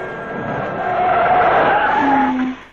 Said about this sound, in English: Air brakes.